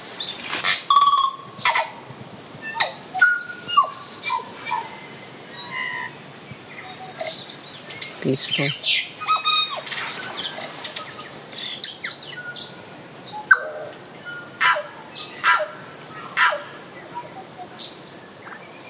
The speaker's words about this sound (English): It's called Birdsong Gully, and in here, well, you can hear them all around us now, but this is if you just so that you want to identify the birdsong, what you listen to, these little recordings. Now this is the tui.